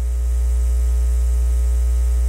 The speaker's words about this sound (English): But the other one was a buzz, that's got to be a hum. You think it's a hum? Okay. No, …, it's not 50 hertz. It was actually 60 hertz.